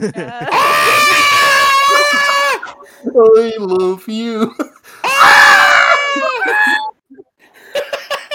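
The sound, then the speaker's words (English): A person lets out two long, loud, shrieking screams in imitation of a dinosaur, with a brief spoken phrase in between and a few faint sounds trailing after. “What did the other dinosaurs sound like? Probably just endless screaming.”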